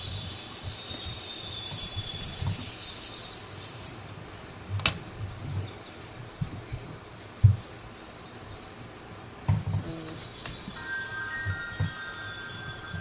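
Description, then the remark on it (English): Quiet, atmospheric music drifts along with a nighttime feel, with soft owl hoots and insect-like chirps woven through it and occasional low thumps. Nobody speaks. “Love this owl music up.”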